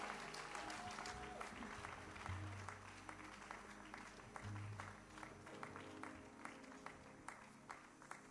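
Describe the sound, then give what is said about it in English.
A church audience claps to welcome a minstrel, a steady stream of dense, overlapping applause that holds throughout, with low sustained tones and a faint murmur of voices underneath. “I want us to put our hands together and call another powerful minstrel.”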